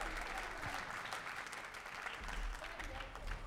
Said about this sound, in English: Before we go any further, please, one more round of applause to … and his amazing group. Yes, here for …. Such an amazing group of musicians.